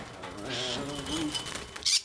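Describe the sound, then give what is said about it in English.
A caged boarding bird coos softly in a low, wavering murmur, ending with a brief sharp rustle like a flutter of wings. “He gives boarding birds pedicures and vaccines, but first has to gently catch them in their cages without them escaping.”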